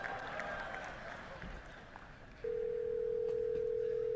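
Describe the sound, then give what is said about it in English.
A telephone ring tone cuts in halfway through as a phone's assistant calls a hair salon to book an appointment, a loud, steady electronic hum held for nearly two seconds, following a stretch of murky background noise. “Here's an example of one of the phone calls.”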